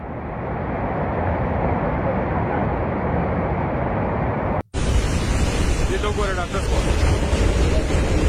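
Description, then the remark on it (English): Rushing floodwater from Pakistan's monsoon floods roars loudly and steadily, carrying rocks and mud, a dense continuous churn that breaks off for an instant midway, then returns brighter and harsher, with faint voices beneath it. “Water catching up to whatever was already rushing.”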